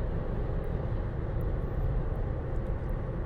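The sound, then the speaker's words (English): A steady, heavy jet engine roar drones on without a break, deep and rumbling with a constant loudness, from a single-seater SS Dark Star plane flown at high speed and high altitude in a flight simulator. No one speaks. “Hell of a thing flying the SS Dark Star. Thing I don't like about the plane is it's a single-seater in real life.”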